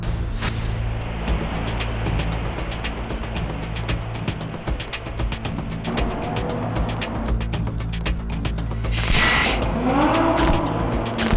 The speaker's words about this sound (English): It's a pleasure to see this car going around here in the echo under this freeway we're at. It just sounds like a racetrack.